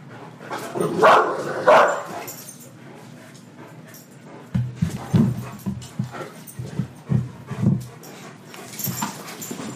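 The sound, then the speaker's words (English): Two 200-plus-pound dogs bark in two loud bursts, then let out a series of low whimpers, whines and pants, with no one speaking. “There's one thing those two dogs can do is throw their butt into it.”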